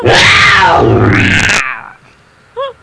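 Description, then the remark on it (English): A person lets out a loud, throaty mock roar lasting about a second and a half, which trails off into quiet, followed by a brief short vocal chirp. “I am woman. Hear me roar.”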